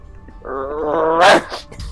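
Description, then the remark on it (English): A person imitates a German Shepherd dog, making a rough growl for about a second that rises into a short, harsh snarling bark at the end. No words are spoken. “You get that mutt out of here. I'm allergic to dog.”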